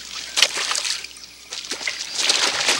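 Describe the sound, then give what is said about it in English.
Water sloshes and splashes in a steady series of irregular surges as people wade across water that is not very deep, with a brief louder splash early on and no talking. “Why did this cast of Stand By Me walk through this water?”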